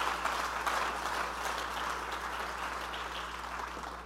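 A crowd claps steadily to thank God, a dense wash of many hands slapping together at once, sustained throughout with no talk over it, alongside a low steady hum.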